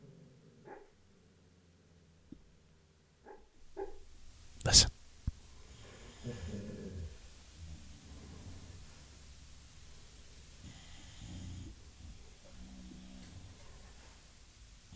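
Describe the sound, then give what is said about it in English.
A sleeping dog, O'Neill, dreaming, lets out muffled, soft woofs and snorts, with one sharper bark standing out, while people talk quietly over a low background hiss. “He's having a dream, barking in his sleep.”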